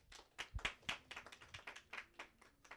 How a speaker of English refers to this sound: Please give me a round of applause